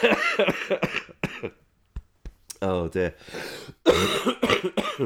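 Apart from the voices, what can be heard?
coughing fit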